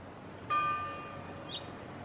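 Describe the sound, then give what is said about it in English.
Church bells ring out from the church at the end of the road: one clear bell strike with a humming, slowly fading tone, then a softer, higher chime about a second later, over a low steady background hiss. “Can you hear the bells from the church at the end of our road?”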